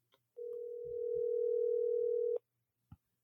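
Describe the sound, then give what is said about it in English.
A single steady telephone ringing tone sounds for about two seconds as a call is placed to a contest winner, loud and clear over a line, with a couple of faint low thumps in the background and no talking. “I'll call the winner right now.”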